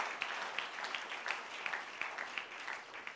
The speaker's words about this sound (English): Why don't you clap your hands and bless the Lord?